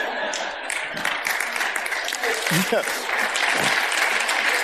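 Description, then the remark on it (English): A church audience applauds steadily during a service, a dense wash of many hands clapping at an even level throughout, with a few faint voices and brief vocal sounds rising through the noise. “No, don't clap. Don't clap.”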